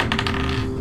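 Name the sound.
dice being rolled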